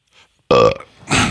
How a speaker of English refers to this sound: Sorry, I sneezed.